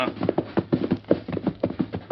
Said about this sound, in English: Horse coming. Whoever that rider is, he's badly hurt. Hey, that's Dad's horse.